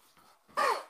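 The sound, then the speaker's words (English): A single short, harsh cough from a person recovering from COVID bursts out after a brief quiet breathy moment, then trails off quickly; no one speaks. “I actually had a cough because I am as you mentioned earlier, I'm the recent COVID survivor, COVID overcomer, but I'm still have a little bit of a cough and it hit me right as you dropped the ball to me.”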